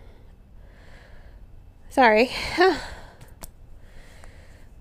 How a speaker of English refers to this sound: having a little trouble breathing right now.